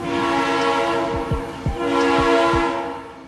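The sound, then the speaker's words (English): A loud, sustained train horn blares over the rumble of a passing train, with rhythmic low thumps of wheels rolling over rail joints underneath. “Those are the sounds of an actual train.”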